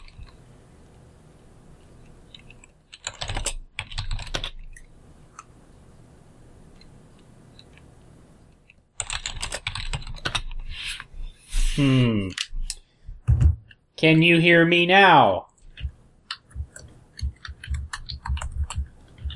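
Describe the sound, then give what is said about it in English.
Clatter of typing on a computer keyboard during an online call, coming in short bursts of quick clicks with pauses between, followed by a person speaking briefly over the tapping. “I can hear you typing.”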